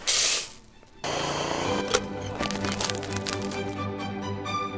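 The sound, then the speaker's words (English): A burr grinder at Zabar's grinds Zabar's signature blend coffee beans for a paper filter, with a steady motor hum and a dense, gritty crackle, running continuously after a brief loud burst and a short lull at the start. “What are we grinding today? It's a Zabar's signature blend, and we're grinding it for a paper filter.”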